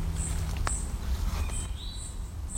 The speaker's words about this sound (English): It's an eastern towhee calling and something very angry. I don't know what. It's small.